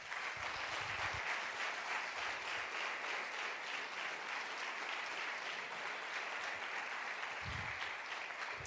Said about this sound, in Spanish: Eso merece un aplauso.